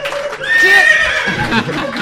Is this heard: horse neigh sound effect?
yes